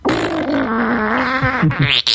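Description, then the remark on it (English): A long, loud, buzzing fart with a wavering low pitch, breaking at the end into several short, bubbly sputters like gas gurgling through. “When your ass sounds like a fucking witch's cauldron. A witch's cauldron. It's a bubbling cauldron.”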